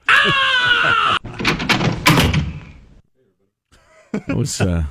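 A loud, shrill scream lasts about a second, then cuts straight into the clattering, creaking noise of a door opening, followed by a short silence and some faint vocal sounds.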